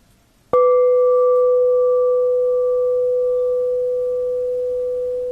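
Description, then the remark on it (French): A single meditation bell is struck once and rings out with a clear, pure mid-pitched tone and a faint higher overtone, sustaining loudly and fading only slightly over several seconds. “Soyez conscient du son de la cloche.”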